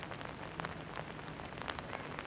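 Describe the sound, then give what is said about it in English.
Steady rain pattering onto the hard surfaces of raised outdoor stages, making them treacherous, with scattered brighter drops splashing over a continuous wet hiss; no voices. “Today is the first time the dancers have been able to rehearse on the raised stages, and the rain has made the surfaces treacherous.”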